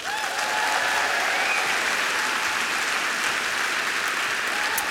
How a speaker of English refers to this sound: Now, this lovely lady is Tracy. Round of applause for Tracy.